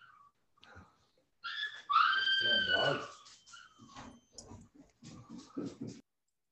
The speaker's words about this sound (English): Of course, everybody's going to hear the dogs go ballistic because mama's home. Okay. So when that happens, that's just kind of a part of the deal.